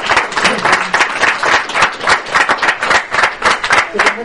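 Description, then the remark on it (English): An audience claps steadily for several seconds, a dense, loud patter of many hands with no pause and no voices standing out. “Just give these guys a round of applause.”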